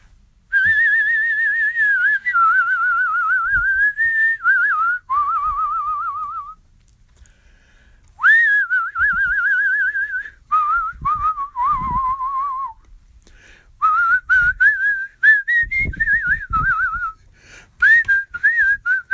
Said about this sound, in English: You know, when I'm down in the dumps, I feel like whistling. And sometimes I just whistle.